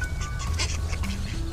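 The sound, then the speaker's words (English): A brief burst of ducks quacking as they fly overhead, several harsh, nasal calls overlapping against a low outdoor rumble, with no one talking. “These ducks are gonna fly right into us.”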